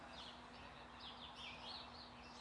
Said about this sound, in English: The bird singing, think about that. Explain that to me scientifically.